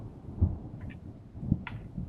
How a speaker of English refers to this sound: There is a storm beginning to roll in. The northern horizon is a fast-moving blanket of dark clouds, and you can already hear the thunder and smell of the approaching rain. It will be here soon.